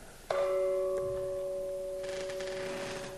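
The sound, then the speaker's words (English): A single meditation bell strike rings out with a clear, steady tone that sustains and slowly fades, resonant, concluding a sitting meditation, with no voices present. “And with those bells, we can conclude our sit.”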